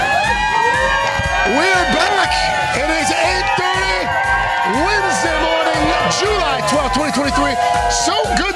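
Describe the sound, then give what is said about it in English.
A large outdoor crowd cheers and shouts steadily, many voices overlapping in loud, excited whoops and calls that rise and fall without a pause throughout. “It's a good-looking crowd.”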